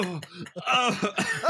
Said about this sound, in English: Cough up a little blood.